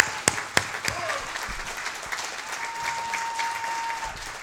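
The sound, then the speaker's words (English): An audience at a graduation ceremony claps steadily for the teachers in a dense wash of applause, with a couple of sharper claps standing out early on and a faint whistle-like tone running through the latter half. “How about giving all of our teachers a big round of applause?”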